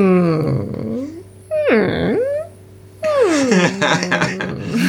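A voice imitates a film character's trademark whimper, with three whiny, wavering cries, each sliding down and back up in pitch, separated by short pauses.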